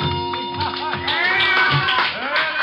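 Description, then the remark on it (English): Scattered clapping from a crowd in a bar as a girl finishes her dance, mixed with overlapping voices and a steady background hum, the applause moderately loud. “One look at her and I can see why the ovation.”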